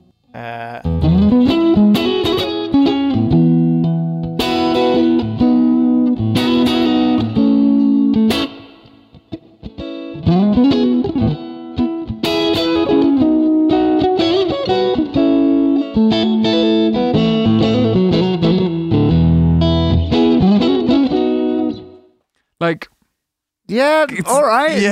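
A distorted electric guitar set to a classic-style tone and washed in extra reverb plays loud, sustained chords and riffs for about twenty seconds, then cuts off, followed by a couple of brief stray notes.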